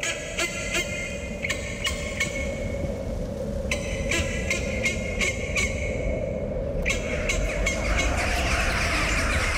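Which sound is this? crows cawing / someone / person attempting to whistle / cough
crows cawing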